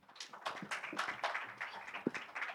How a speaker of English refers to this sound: How's everybody doing today? Come on, let's give God a hand clap.